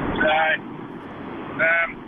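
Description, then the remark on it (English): Steady, blustery wind noise from outside rushes past an open window of a Benz, picked up by a phone microphone near the window sill, a constant low roar filling the whole clip, with two short bursts of voice rising briefly above it. “Nah, I'm in a Benz today, and I put the microphone for the phone up near the window sill, and the cat's a bit of wind noise from outside.”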